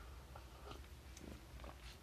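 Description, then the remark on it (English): Soft sips of hot tea, a few brief wet slurping bursts spread over two seconds above a low steady hum, with no one talking. “ASMR sips.”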